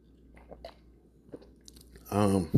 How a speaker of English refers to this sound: So I'm taking a sip of my Pepsi.